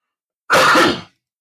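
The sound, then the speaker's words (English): A single loud cough or sneeze bursts out suddenly, a harsh, breathy blast lasting about half a second before trailing off into silence, with no talking around it. “Did you just do one of those coughs where you say some word like?”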